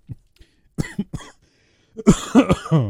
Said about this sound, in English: let me get the cough out.